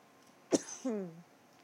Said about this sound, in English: Excuse me. But I have to cough it out.